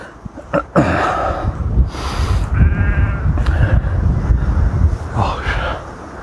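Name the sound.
sheep bleating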